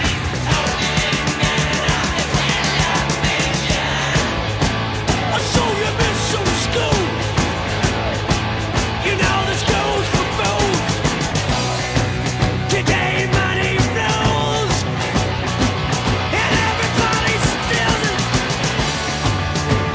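A loud, dense rock song plays steadily throughout, with driving guitars and drums under a strained, near-yelling lead vocal that stays intense for the whole stretch.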